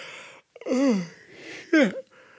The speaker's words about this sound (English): This yawning stuff, I hope it's not something that's like turning into a medical condition, because I never used to.